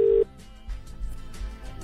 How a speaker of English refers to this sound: Well, should we phone Ben? Let's call Ben and see how we at Jones and Keller Advertising can help.